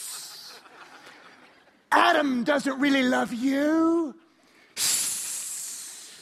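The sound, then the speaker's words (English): A voice mimics the snake tempting Eve with a drawn-out hiss, then speaks a short line in a sly tone, then hisses again, louder and sustained. “It's the best snake I've got.”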